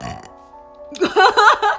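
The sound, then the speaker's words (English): A loud burp rolls out in one long, croaky stretch, preceded by a brief quieter moment with a faint steady tone. “We were talking about shakes in the last one, and you're burping.”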